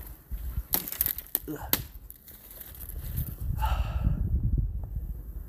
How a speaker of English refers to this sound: I'm gonna break a branch here.